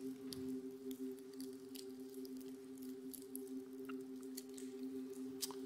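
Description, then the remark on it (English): Crinkly crackling of the thin plastic seal of a prefilled communion cup being slowly peeled back, the next layer after the top one, with scattered small clicks and snaps over a steady low electrical hum, no voices. “Pull back the next layer.”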